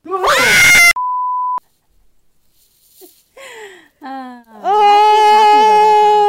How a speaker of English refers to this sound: I heard her screaming from far away.